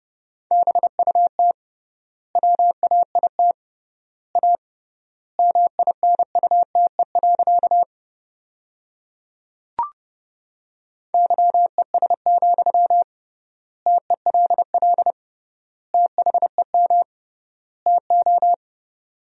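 Rapid Morse code at about 30 words per minute, sending sentences built from the top 500 words with triple word spacing: a steady mid-pitched beep keyed in quick dots and dashes, sent in short groups with longer pauses between, plus a single brief click partway through.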